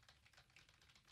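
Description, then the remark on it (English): Rapid, steady clicking of keys on a computer keyboard as someone types a search, a quick run of soft taps with no one speaking. “And you're like having to say what you're typing.”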